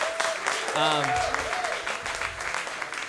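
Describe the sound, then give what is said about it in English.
An audience applauds steadily for about three seconds for string arrangements, a dense crackle of many hands clapping, with a few voices whooping and cheering over it early on. “Give a round of applause to these arrangements for the string.”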